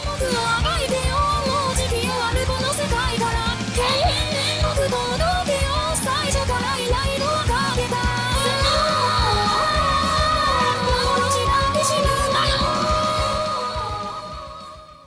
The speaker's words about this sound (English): I was like, I bet there's a YouTube compilation that compares all of the Vocaloids doing this scream. Oh my God. And there was. It was like 16 minutes long.